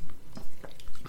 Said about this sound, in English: You have a water bottle with you, …. I believe you're planning to hydrate throughout this episode. You're taking a sip Hydrating now.